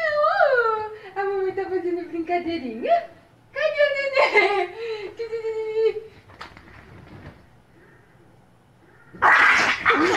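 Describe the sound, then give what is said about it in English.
Dogs whine and whimper after their owner disappears in front of them, in high, wavering cries that slide downward, followed by a few rough, noisy yelps and a short, harsh burst near the end. “So anyway, she doing the thing where she disappears in front of her dogs and immediately they blame each other for it.”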